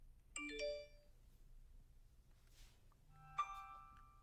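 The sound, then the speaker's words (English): Two bright electronic notification chimes, for an email and another notification, sound a few seconds apart, each a short ringing multi-tone ding that fades out, clear against a quiet background with no talking. “I just got an email and another notification.”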